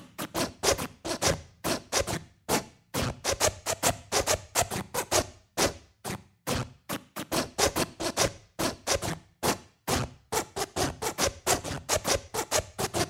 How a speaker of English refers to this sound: The music you are hearing was arranged by the composer Keith Harrison. It is a zipper rag.